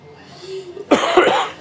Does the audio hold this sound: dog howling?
no